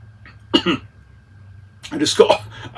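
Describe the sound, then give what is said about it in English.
Coughing and throat clearing after choking on Parmesan crisps: a short pair of harsh coughs, a pause, then a longer, rougher cluster of hacking and clearing that ends in one last sharp cough. “I just coughed up a little bit of the Parm crisps that I was eating earlier, right before the podcast.”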